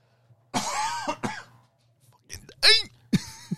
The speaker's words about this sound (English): I need a cough, 1 second.